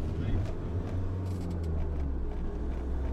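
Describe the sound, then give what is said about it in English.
Steady low engine rumble and road drone fill the cabin of a moving tour bus leaving Fourth Lynn Road on its way to John's house, continuous and fairly loud, with faint, muffled voices murmuring beneath the noise. “We've just got back on the bus and we're now going over to John's house.”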